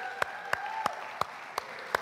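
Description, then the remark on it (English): Audience applause for a new student: a steady wash of clapping with a handful of sharp, evenly spaced claps standing out in a regular beat, moderately loud, with no talking over it. “Let's give him an applause, will you?”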